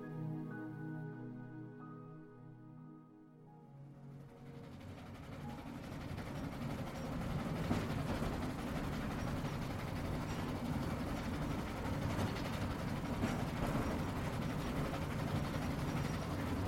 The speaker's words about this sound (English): So now, imagine the warmth of the Mediterranean sun shining over you, and conjure the rhythmic sensation of traveling on a lazy provincial train.